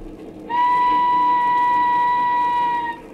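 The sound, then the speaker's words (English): A steam train whistle sounds one long, steady, loud blast of about two and a half seconds over a low rumbling background, then cuts off; a train boarded in London in a film set some 50 years earlier. “Some 50 years ago in London, a young and handsome widow, Lucy Muir, left the home of the mother and sister of her departed husband and boarded a train.”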